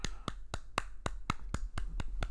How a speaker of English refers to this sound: Look, I'm gonna clap my hands.